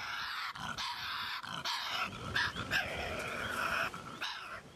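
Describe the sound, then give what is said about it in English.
Tasmanian devils scream and growl in a harsh, rasping, nearly continuous racket, loud, with screeches rising and falling over a gravelly snarl and no talking. “I found a YouTube of them screaming, so we can probably chuck that in here so we can get a little taste of that”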